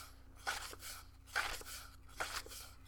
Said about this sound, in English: Page turning sounds. Here's your ASMR for the day. Me very, like, aggressively turning pages.